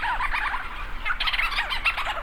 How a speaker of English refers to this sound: Thousands of leeches storm petrels circle overhead, swooping and calling into the night. Lang Elliott captured these sounds.